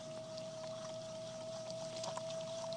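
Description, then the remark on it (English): Water splashes and trickles onto clay on a spinning potter's wheel as a potter slams the clay down to center it, soft and wet over the wheel motor's steady, thin whine, with faint scattered drips and no talking. “I'm going to slam him down. And put water on.”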